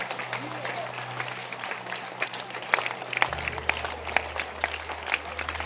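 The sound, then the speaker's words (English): An audience clapping their hands together while praying to overcome the demon of sleep, a dense, steady patter of many claps with sharper individual smacks standing out, over a low continuous hum and faint murmuring voices. “Be, clap your hands and pray to overcome the demon of sleep.”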